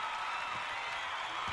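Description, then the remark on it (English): A steady, dense wash of crowd cheering and applause fills the whole moment without letting up, moderately quiet, with no clear talking over it. “The crowd go wild. The people go crazy.”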